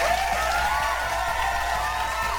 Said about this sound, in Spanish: Claro que sí, personas que han puesto su granito de arena para que estemos aquí de nueva cuenta esta bonita semana. Un aplauso para todos ellos.